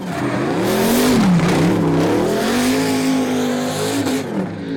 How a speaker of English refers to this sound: A screamer pipe on a well-sorted turbo LS sounds mint.